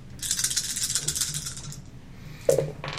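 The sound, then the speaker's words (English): A handful of dice rattles and clatters across a hard tabletop for a couple of seconds, then a final sharp clack as they settle, fairly loud with no talking. “Last roll, then. Assuming you succeed.”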